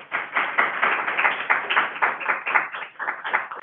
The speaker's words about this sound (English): Oh, my, applause, actual applause at Grand Rounds.